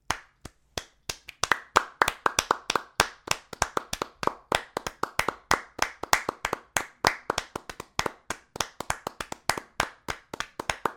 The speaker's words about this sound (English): Not one singular clap. Like, when I say a clap, I mean a sustained level of clapping over an amount of time. Let's give them a taste, like this.